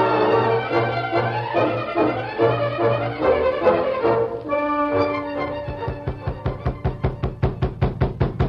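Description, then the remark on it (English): After a stretch of dramatic music, a rapid series of sharp knocks on a wooden door starts up, steady and insistent, growing quicker and more distinct toward the end as the music fades. “York! York! Open the door! Quick!”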